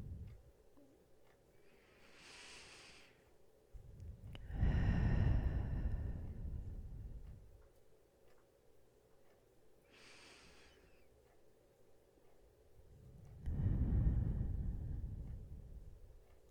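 Slow, deep meditative breaths: two full cycles, each a soft airy inhale through the nose followed by a long, fuller exhale, with quiet pauses between and no talking.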